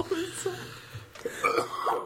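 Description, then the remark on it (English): A person coughs and clears their throat in a few short, raspy bursts, with gravelly voiced rumbles between them, at a moderate level. “Yeah, so I've got a frog in my throat.”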